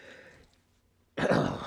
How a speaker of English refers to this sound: Sorry, allergies are getting to me today here. Was cleaning up earlier, so there's a little more dust floating around. So I got a lot of allergies to dust, so that is one of the aspects that forces me to sneeze or makes me sneeze.